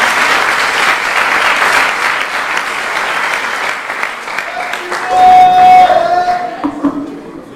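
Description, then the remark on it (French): An audience at an evening church gathering in Marseille breaks into loud, dense applause for a guest speaker. It holds steady for several seconds, then thins out as a brief high whoop or tone rises over the fading claps. “Alors sans plus tarder, j'aimerais qu'on puisse l'applaudir, le remercier de venir nous partager ce message.”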